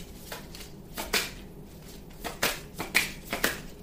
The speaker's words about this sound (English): So yeah, Three of Swords showed up again as I'm shuffling.